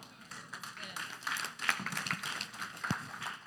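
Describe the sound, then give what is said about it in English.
Scattered, uneven clapping from part of a church audience during a sermon, a loose patter of claps at moderate volume that never builds into full applause, with faint murmuring underneath. “But I know why only some of y'all clapped, because we got used to the cruise ship Christianity.”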